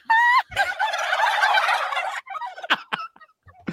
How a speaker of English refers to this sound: I mean, those fucking turkeys, they know. They know. That is so crazy. They know, but they have no idea. They're all going to be off, you know? It's just normal behavior for them. I didn't realize turkeys are black like that. Those are black turkeys.